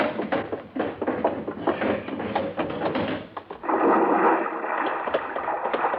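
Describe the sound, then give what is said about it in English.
A big box clatters and bumps as it falls off the back of a car, tumbling in a rapid series of knocks, then bounces down into a lake with a loud, rushing splash that churns on for a couple of seconds. “Bounced right down into the lake, huh?”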